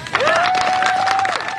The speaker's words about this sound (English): She stands there for a minute, chin up, unsmiling, as people clap and cheer and reporters begin to holler out questions.